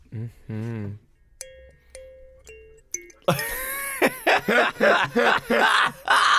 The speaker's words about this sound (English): It's called a thumb piano.